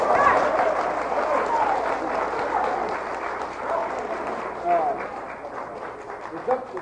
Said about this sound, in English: Please don't do that applauding. I'm going to keep going.